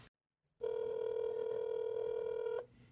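After a moment of silence, a phone line gives a single steady electronic tone lasting about two seconds as a call is dialed out, clear and close with no voices.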